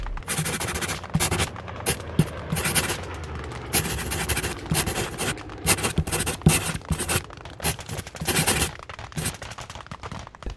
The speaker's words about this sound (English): She takes out her diary, filled with cryptic diagrams and notes, and starts sketching a complex diagram connecting the artifacts. The scratching of her pen on paper is amplified, emphasizing the importance of her notes and plans.